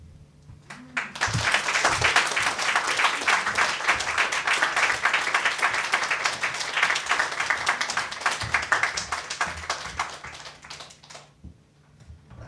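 An audience bursts into sustained applause, many hands clapping in a dense, steady wash for about ten seconds before tapering off and fading out.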